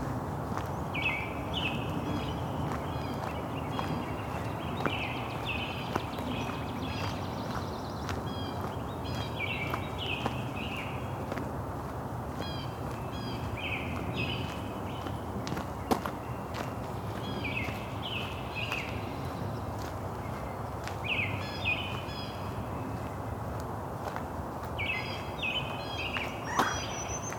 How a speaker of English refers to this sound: So as more light gathers, I'm going to set this down and have a soundscape, dawn chorus.